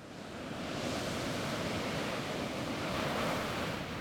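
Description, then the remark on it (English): Heavy ocean surf roars steadily, crashing violently into jutting volcanic cliffs at sunset, a dense, continuous wash of crashing water with a slight swell midway and no voices, fairly loud. “Waves crash violently into jutting volcanic cliffs.”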